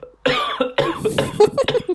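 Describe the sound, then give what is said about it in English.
A series of loud coughs in quick succession, three or four bursts followed by rougher hacking and throat sounds, with no talking. “I'm going to cough.”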